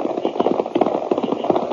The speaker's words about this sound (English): We were just getting past those rocks when I heard what sounded like about a half a dozen horses coming toward me.